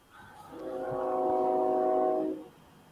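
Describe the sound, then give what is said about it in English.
A train horn blares in one long, steady chord, swelling in and holding for about two seconds before cutting off, with faint background rumble and no talking. “We got our own horn. We got our own train.”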